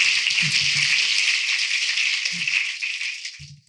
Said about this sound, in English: Let's give them all a great round of applause.